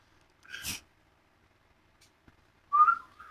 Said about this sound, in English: Damn it. Fucked up my whistle.